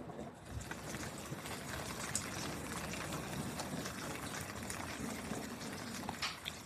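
Steady rain falls outside a window, a continuous even hiss dotted with scattered crisp pattering drops, holding a constant moderate level throughout with no voices.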